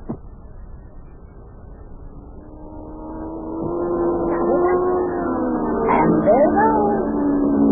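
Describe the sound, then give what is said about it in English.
A racing car driven by Yukie comes through a tunnel, its engine roaring steadily and growing louder as it approaches, its droning pitch climbing and whining higher over the last few seconds as it speeds past. “Oh, boy, Mayor, that Yukie is really driving that car.”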